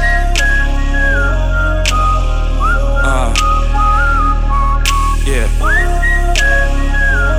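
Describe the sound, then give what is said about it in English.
A person whistles a bright, sliding melody over a steady backing track with regular percussive hits, the whistled tune loud and upfront throughout. “She got me thinking about her daily while I whistle down the street like.”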